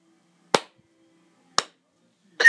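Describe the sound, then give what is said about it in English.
Two crisp hand claps about a second apart, slow and deliberate, imitating a child in the back seat of a car clapping along to music playing in the car, followed by the start of a voice at the very end. “Philip is back there clapping his hands together”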